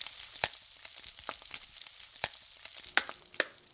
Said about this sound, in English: So this is a fun thing we can do because this is an audio program. Let's just play eggs frying right now just so we can have a conversation about it.